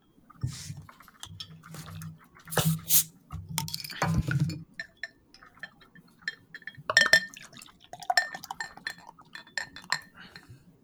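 Stout beer is poured aggressively into a glass to build a good-sized head and a cascading effect, glugging and splashing for a few seconds, followed by quieter fizzing, drips and a few light glass clinks.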